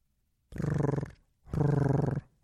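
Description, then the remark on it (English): A person imitates a cat's purr with two low, throaty bursts, each just under a second long, with a rapid fluttering pulse running through the loud, rumbling voice. “How would you do a purr?”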